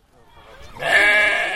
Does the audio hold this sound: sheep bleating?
yes